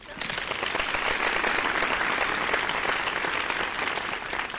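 Steady applause from a crowd fills the whole stretch, a dense, crackling wash of many hands clapping at once, fairly loud, holding level before easing slightly near the end.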